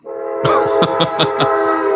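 A loud train horn sounds, holding a steady, blaring chord for over a second with a few rhythmic swells, over a low rumble. Nobody speaks.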